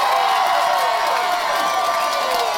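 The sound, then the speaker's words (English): A crowd cheers loudly and steadily for a few seconds, a dense wash of shouting and whooping voices that barely rises or falls, with no single voice standing out. “The crowd was already behind him.”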